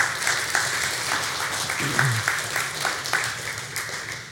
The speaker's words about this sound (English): Yeah. You can clap for that.